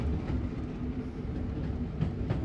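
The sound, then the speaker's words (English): A train crosses Victoria Bridge, a 200-foot single-span iron railway bridge built in 1861 by the firm John Fowler, with a steady, heavy low rumble, broken by a couple of soft clacks from the wheels near the end. No one speaks. “We're just crossing Victoria Bridge, which, when it was built in 1861, was the largest single-span iron structure ever built at that time by a firm called John Fowler, and it's 200 feet single-span.”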